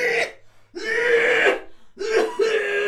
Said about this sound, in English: The violent coughing turned into retching.